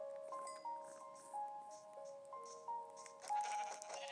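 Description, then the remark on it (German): Two sheep bleating in a video game, a few short bleats scattered over steady, quiet game music, with a busier burst of sound near the end. No one speaks. “Schaf. Schaf. Zwei Schafe.”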